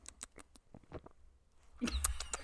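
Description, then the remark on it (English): Quiet wet clicks and small swallowing noises, then a louder stretch of gulping beer, a Jalapeno Mexican Lager from the Spice Trade brewery, near the end, with no talking. “One of my favorite things is listening to us awkwardly gulp beer when I'm editing.”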